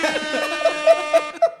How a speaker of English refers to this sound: That's what it'll sound like when we pull up on the cruise ship. We'll get us an air horn.